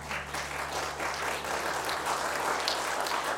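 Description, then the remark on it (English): A crowd at a live band performance applauds the bass player steadily, a dense wash of many hands clapping at once that holds at an even, fairly loud level throughout, with no voices standing out. “clap for Hank on the bass.”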